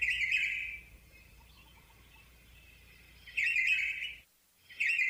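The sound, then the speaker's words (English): A red-whiskered bulbul in the Honolulu, Hawaii area sings bright, liquid whistled phrases in short bursts, three in quick succession with brief pauses between, clear over a faint low background hum. “And we're listening to the sound of red-whiskered bulbul in the background.”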